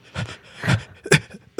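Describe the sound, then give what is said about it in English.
A voice imitates hyperventilating: four quick, breathy huffs in an uneven rhythm, each a short burst of airy noise, fairly loud with brief pauses between. “I'm like, I don't know if I was hyperventilating, but I was something to the effect of.”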